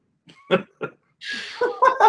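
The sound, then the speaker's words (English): A dog eating her food noisily with her mouth open: a few wet, smacking chomps, then a longer stretch of loud, messy chewing, with no talking. “No, she has been slowly eating her food, but then I look at her when she starts eating because she's a mouth eater, like open mouth chomper. Oh, my God. And it's loud.”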